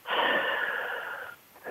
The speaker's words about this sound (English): they want you to take a deep breath in and breathing in love, grace, and forgiveness. Breathing out all the energies that no longer serve you.